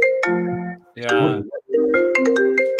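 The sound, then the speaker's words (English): A phone ringtone plays a loud electronic melody of sustained bright tones for a call from the speaker's wife, pausing briefly in the middle before the tune continues, with no one talking over it. “Something's ringing. It's my wife.”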